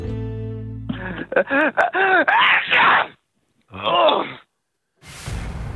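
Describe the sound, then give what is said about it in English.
A voice imitates a 75-year-old grandmother cooking a casserole at the stove who is about to sneeze, with a series of wavering, rising-and-falling vocal gasps, a pause, another strained breath, and then a sudden breathy, noisy sneeze burst at the end. “She feels a sneeze coming on. What does she sound like?”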